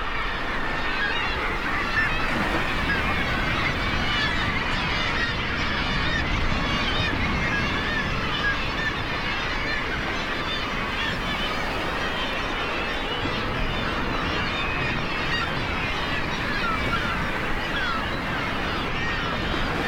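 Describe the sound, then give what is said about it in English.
A dense, continuous chorus of seabird calls from a crowded nesting colony on Great Island off Newfoundland in the North Atlantic: gulls, petrels and kittiwakes crying over one another and growling murres, with a steady wash of waves crashing against the rocks underneath throughout. “As waves crashed against the rocks, Lang Elliott captured the calls of gulls, petrels, and kittiwakes, and the growls of muirs.”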